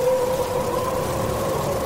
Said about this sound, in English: Now how about a little whistling wind?